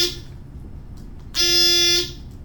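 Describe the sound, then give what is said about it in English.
Several players press quiz buzzers at once on a count of three, sounding together in one loud, harsh, sustained buzzing tone lasting just over half a second, after the faint tail of an earlier buzz fades out at the start. “Count to three and everybody buzz.”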